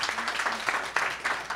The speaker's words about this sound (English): Round of applause for Stephen's opening statement.